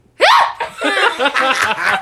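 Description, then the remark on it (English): A voice imitates a fifth-grade schoolgirl's exaggerated, squeaky hiccup with a sharp rising onset, followed by a string of breathy laughter-like bursts. Fairly loud, no words spoken. “when I was in fifth grade, we would walk down the halls, and there's this one girl who used to hiccup, but she used to go like this.”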